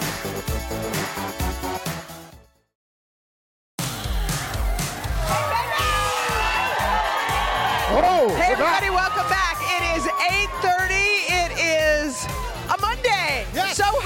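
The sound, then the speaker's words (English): A short musical bit, a second of silence, then a loud outdoor crowd erupts in sustained cheering, high screams and whoops rising and falling over one another. It is a spring-like day with temperatures in the 60s. “Look at this crowd. Is this insane? This is a great crowd.”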